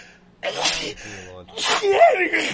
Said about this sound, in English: I have to sneeze.